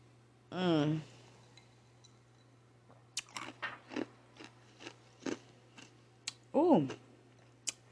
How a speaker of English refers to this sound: Ooh. You like ice in your mouth, huh? I do. It was cold and nice.